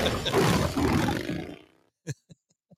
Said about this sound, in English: Whose motorcycle is this? It's a chopper, baby. Whose chopper is this? Zed's. Who's Zed? Zed's dead, baby. Zed's dead.